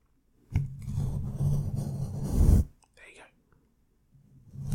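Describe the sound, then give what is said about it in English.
Loud rubbing and scraping against a microphone during an ASMR bit, knocking dust off the mic, a dense rough friction noise lasting about two seconds, followed by a few softer brushing scuffs and a faint whispered sound. “That's actually knocking quite a lot of dust off the mic, actually.”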